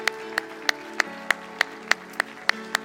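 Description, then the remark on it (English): A church audience claps hands to the Lord in a steady, even beat, about three claps per second, each one a sharp, crisp burst over a faint sustained tone underneath. “Everybody clap your hands to the Lord one more time, shall we?”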